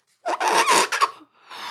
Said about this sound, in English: I'm gonna blow up the balloon.